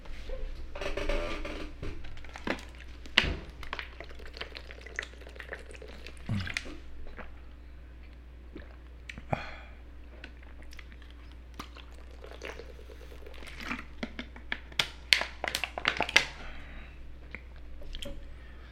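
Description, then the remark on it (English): Mouth sounds of someone taking a quick water break: wet sips, swallows and small smacking clicks scattered irregularly over a quiet low hum, with no talking. “All right, so let me just take this quick little water break and I'll be right back.”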